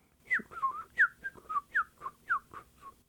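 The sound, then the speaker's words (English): A person whistles an imitation of birds calling: a quick series of about ten short, chirpy falling notes, clear, with no talking. “But off in the distance, he heard something. It sounded like his little gang of birds.”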